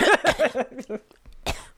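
A man gives a quick series of voiced, rhythmic throat-clearing grunts, then a short pause and one sharp, breathy cough.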